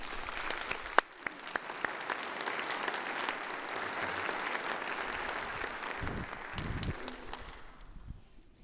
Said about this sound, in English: Would you welcome them with your applause?